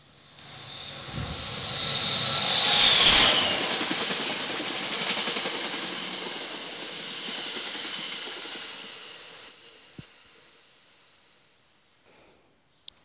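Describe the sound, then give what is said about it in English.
A loud, rumbling train pass-by swells over the first few seconds, peaks with a harsh high-pitched hiss, then slowly fades with a couple of faint clanks near the end. “Oh, another train.”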